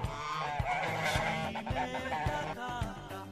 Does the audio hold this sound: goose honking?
yes